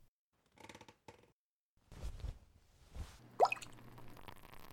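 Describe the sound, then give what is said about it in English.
A handful of partridge berries from a satchel dropped into a liquid brew: a few light taps first, then several soft, wet splashes and a final bubbly, rising plop, with no one speaking. “Grab a handful of partridge berries from my satchel and toss them in.”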